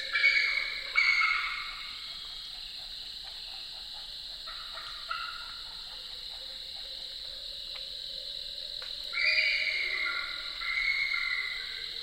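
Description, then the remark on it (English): Southern leopard frogs chuckle in a marsh in autumn, their rattling clucks rising out of a dense, steady chorus of insects and other frogs. No one speaks. “Southern leopard frogs chuckling away in a marshy spot.”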